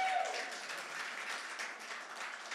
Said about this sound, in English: So good, and I'll let you know, man, you're about to clap a whole lot more today.